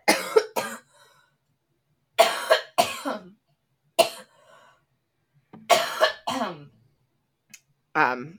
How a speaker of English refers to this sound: sorry, I'm going to cough here.